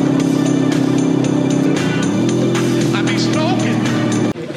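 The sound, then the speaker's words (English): An expensive car pulls up, its engine humming steadily, then its pitch drops partway through as it slows and settles into a lower idle, staying loud and continuous until a brief cut near the end. “Buddy Love pulls up in an expensive car and an expensive suit”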